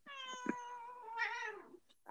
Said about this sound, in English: My cat is meowing. She craves attention, like, all the time.